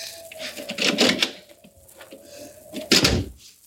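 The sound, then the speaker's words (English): The unlocked door of a house is opened: metallic latch rattles and clicks, a long thin hinge creak, then a solid knock as it swings wide. No one speaks. “Here's a door. It's only unlocked. Oh, it is.”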